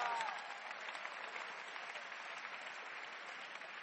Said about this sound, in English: Hey! Clap your hands for our shepherd we have.